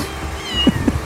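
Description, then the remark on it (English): A kitten by the side of a road meows in short, high-pitched bursts, several quick cries in a row, clear with faint background noise and no talking. “We got a kitten problem.”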